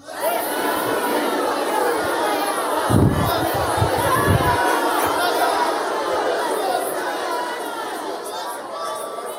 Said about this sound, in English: All right, so I'm going to say 3, 2, 1, action. You're going to stand up, and for about 20 seconds, you're going to be shouting out this phrase as loud as you can. 3, 2, 1, action.